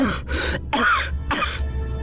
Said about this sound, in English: The words broke off with a series of short, sharp coughs, and Austin finally emerged, shaking his head and covering his mouth.